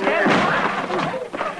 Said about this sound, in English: I think the door is locked, Mr. Dillon. Stand back a little. I'll kick it open. Stand back.